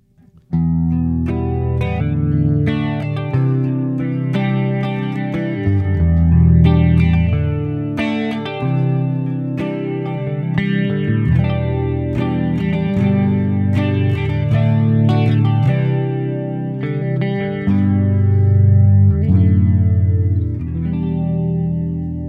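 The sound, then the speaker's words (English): A clean electric guitar preset, a gold top guitar with Seymour Duncan pickups, neck and bridge both active, through an amp, EQ pedal flanger, delay pedal and reverb, plays sustained chords and picked notes for about twenty seconds with swirling flanger, trailing delay repeats and a wash of reverb, steady and fairly loud with no voices. “All right, so this is what the clean preset sound is that I have.”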